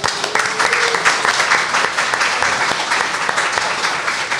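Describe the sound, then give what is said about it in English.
An audience gives another round of applause, a dense wash of overlapping hand claps that stays loud and even for several seconds without letting up. “So another round of applause for them.”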